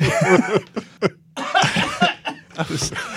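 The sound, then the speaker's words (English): A person coughs repeatedly in a loud, rough fit of several bursts, broken by short pauses and throaty, strained sounds, with no clear words spoken. “Oh, shoot. I missed the cough button.”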